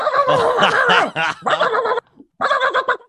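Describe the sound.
A person imitates an aggressive dog in an office, letting out loud growling barks in three harsh bursts, with a brief pause before the final one.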